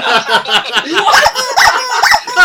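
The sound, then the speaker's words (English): A rubber chicken squawks repeatedly in loud, strained honks, with wavering pitch and short gaps between them, prominent, with no talking. “I gave the hero category a rubber chicken”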